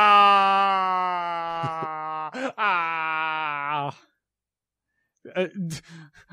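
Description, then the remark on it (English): A man in film audio lets out a loud, drawn-out moaning, screaming wail for several seconds, likened to Loomis in Halloween 6, briefly broken midway, then falls silent before a few short, strained vocal bursts near the end. “Screaming Loomis noises.”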